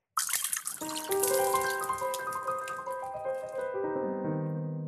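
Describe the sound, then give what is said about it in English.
Martinis are poured out: liquid is poured steadily into a glass, a continuous splashing gurgle whose ringing tone rises as the vessel fills, then trails off into a thin trickle. No voices. “You're pouring out the martinis.”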